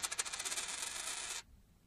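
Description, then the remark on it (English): A fake coin dropped onto a hard surface: a quick flurry of bright metallic bounces settles into a rattling ring that cuts off abruptly after about a second and a half, with no talking. “This is a fake coin. It sounds the same as the other one.”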